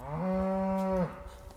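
A single cow lets out one long, steady moo lasting about a second, loud, followed by quiet outdoor background, as a rancher's cows are gathered and moved toward the exits in a valley in north central Washington.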